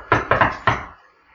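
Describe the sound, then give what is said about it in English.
Four firm knocks on an innkeeper's wooden door, fairly loud, in an uneven pattern: one knock, a quick pair, then a final knock, with no talking. “I'm going to knock on that innkeeper's door. I'm going to go...”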